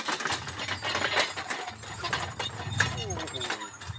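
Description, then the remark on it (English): A logging horse walks through thick woodland, hooves thudding irregularly on the ground amid crackling undergrowth, with faint squeaks and a muffled voice in the background. “So there's an example of how manoeuvrable a horse is.”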